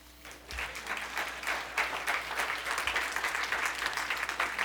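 An audience of people clapping together, a dense, steady wash of applause that swells quickly and holds throughout, moderately loud, with no voices standing out.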